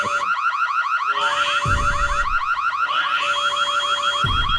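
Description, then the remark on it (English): A fire alarm's rapid electronic beeping repeats loudly and steadily through a piece of music, with sustained synth tones and occasional deep thumps underneath. No one speaks. “It's the fire alarm beeping that does it for me.”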